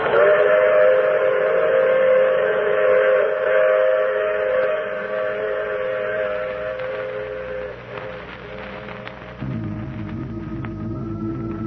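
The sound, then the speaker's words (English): A steam train whistle sounds long and loud, its layered tones holding steady, then trails off as the low rhythmic rumble and clatter of the train on the rails takes over. “I take this same train every week at this same time.”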